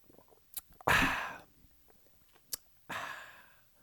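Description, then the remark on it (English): Someone takes a quick sip of water: small mouth clicks and two breathy, hissing bursts like slurping sips or exhales after swallowing, with quiet pauses between, no talking. “Let's take a quick sip of water.”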